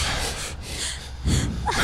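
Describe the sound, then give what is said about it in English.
Quick, forceful breathing: two sharp breaths drawn in back to back, then a heavier breath pushed out, each a rushing, airy burst with no talking. “So it's like two breaths in, one breath out.”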